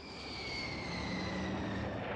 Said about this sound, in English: That was the question that must have been in Jack Lynch's mind as his plane taxied to a stop in front of the terminal.